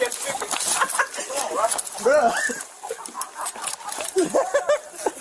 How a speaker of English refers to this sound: Police were called because the obstinate hen was blocking someone's front door. Yeah, that's a chicken.